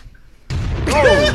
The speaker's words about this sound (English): Give me another explosion.